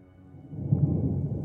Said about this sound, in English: The sky, a dark gray, opened to allow a slight drizzle of rain to fall onto them.